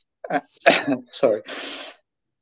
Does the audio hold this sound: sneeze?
yes